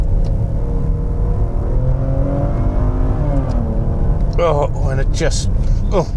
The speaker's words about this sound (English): But did I mention the sound? I love the sound of the engine. It just makes a beautiful roaring noise.